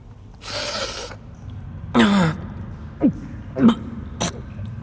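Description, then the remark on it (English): A long, breathy sniff is followed by a harsh, voiced cough and then three shorter coughs spaced about half a second apart, close and fairly loud against a quiet background. “Sniff this.”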